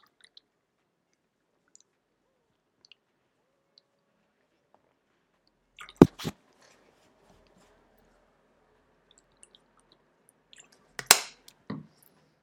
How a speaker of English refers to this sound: Anyway, water break, ladies and gentlemen. Let me drink some of this shit.